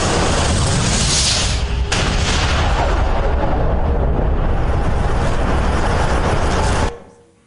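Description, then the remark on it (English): A massive explosion sound effect depicting the Big Bang, the universe bursting into existence: a loud, deep roaring blast that rumbles continuously for about seven seconds with a surge near the start, then cuts off abruptly. No one speaks. “Follow the clues, and we can deduce that a very long time ago, the universe simply burst into existence. An event called the Big Bang.”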